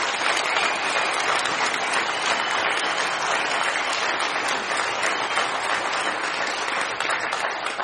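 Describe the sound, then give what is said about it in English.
A crowd at a forum for sheriff's office candidates applauds the candidates steadily for several seconds, a dense, sustained wash of clapping at an even loudness with no voices standing out. “I'd like to give each candidate, give them a big round of applause.”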